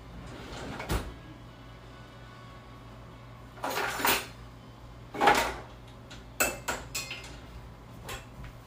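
Cupboard doors and drawers are opened and shut in a quick, irregular series of knocks and bumps as someone searches for forks and silverware, with some clattering of dishes and cutlery and no talking.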